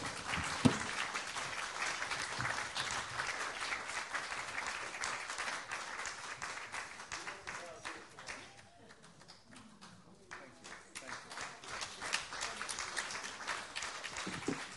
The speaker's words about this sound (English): So I'd like them actually both to come forward. And now you can applaud both of them.